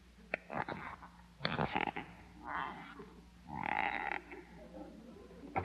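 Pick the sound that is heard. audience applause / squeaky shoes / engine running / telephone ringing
squeaky shoes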